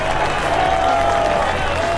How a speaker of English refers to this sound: He gets a standing ovation from this Warner Park crowd. A fitting cheer for the Big O right up against the center field fence.